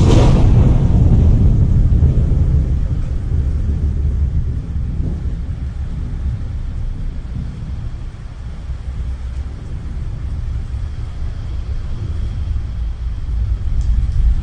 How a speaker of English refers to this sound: If you haven't heard it or seen it, it's a great video from the Trump, I guess we can say campaign, because it sure feels like a campaign video from Donald Trump with the storm.